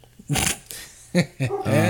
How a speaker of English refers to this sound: I hit the fucking window and now the dogs got fucking closer.